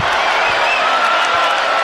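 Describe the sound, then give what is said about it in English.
A large arena crowd at the Marriott Center roars steadily after a BYU basketball steal and score by Jackson Robinson, a dense wash of cheering and shouts with a few whistles rising above it, loud and sustained throughout. “Jackson Robinson brings the crowd to life here at the Marriott Center.”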